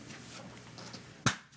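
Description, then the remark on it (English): One sharp hand clap rings out after a stretch of quiet background hiss, crisp and sudden, cutting off almost instantly with no echo trailing after it, in a dry room with foam panels on the walls. “You heard just the clap. No room sound.”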